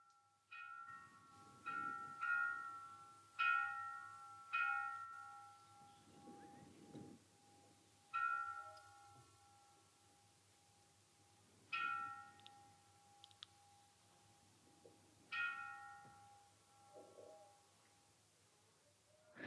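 The monastery bell of Plum Village rings softly in repeated, irregular strikes, each bright tone fading into a steady lingering hum, with a low background rumble and no voices.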